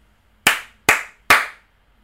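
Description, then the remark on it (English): Three crisp, bright hits of layered finger snaps and hand slaps, given as a song rating, land in an even, steady rhythm, each sharp and loud with a quick decay, and no voices alongside. “It was like two layers of snaps.”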